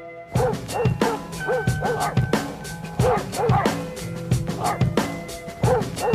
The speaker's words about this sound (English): I mean, they remixed …. Brilliant.